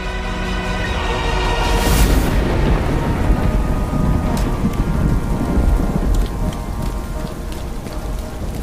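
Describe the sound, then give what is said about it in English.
Heavy rain pours steadily at night while thunder rumbles low underneath, with a sharp crack of thunder breaking through early on, amid lightning. The storm sounds loud throughout, with no voices. “It turned out to be good camouflage in the storm, the night I used it, the night I took a vow from the grave.”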